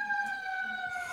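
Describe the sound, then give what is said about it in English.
An emergency vehicle siren wails steadily, its bright harmonic tones drifting slightly downward in pitch as it passes by outside on a street with a hospital. “I love the fact that you guys just have sirens all the time.”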